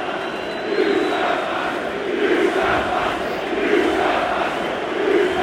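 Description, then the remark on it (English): A huge football stadium crowd of about 70,000 people shouts "You Scouse bastards" in unison, a dense, loud roar of many voices that swells and dips in a rough chanting rhythm throughout, with no single voice standing out. “And 70,000 people shouting, "You Scouse bastards."”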